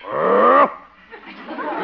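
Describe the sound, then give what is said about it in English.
A man gives a short, loud, growling roar in imitation of a lion, lasting about half a second, followed by quieter murmured vocal sounds. “My, you look like a great big old lion behind that desk.”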